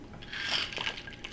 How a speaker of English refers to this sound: Got some nice good gulps in there. I appreciate that you swirled it around in your mouth.